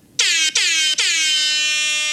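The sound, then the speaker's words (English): A loud air horn blasts three times, two quick bursts then one long sustained note, bright and brassy with a steady pitch, no voices over it. “Yeah, that was like a more robust horn.”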